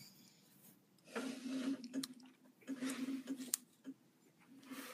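A dishwasher running, its low steady motor hum overlaid with irregular surges of sloshing, spraying water that swell and ease over several seconds, with no one talking.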